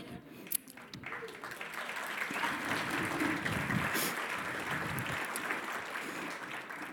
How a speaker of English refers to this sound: The church erupted in applause and praise to God. There was not a dry eye in the congregation.